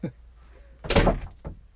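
A house door slams shut with a loud, booming thud that rings out briefly, followed by a quicker, softer knock as it settles in the frame.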